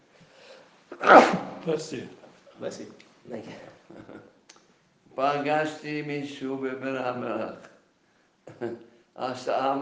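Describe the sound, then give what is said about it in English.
A single sharp, loud sneeze bursts out near the start, followed by a person talking in a steady voice with brief pauses. “Bless you.”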